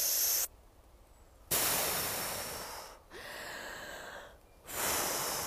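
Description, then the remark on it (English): Fast, deep breaths demonstrating breathing while running at a faster pace: several loud, airy rushes of inhaling and exhaling in a quick rhythm, separated by brief pauses, with no talking. “You might find that it's like deeper breathing when you go faster, so it might be more like this.”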